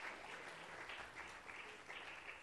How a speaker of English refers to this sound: Can I get some clap offering here? Hallelujah. Praise the Lord.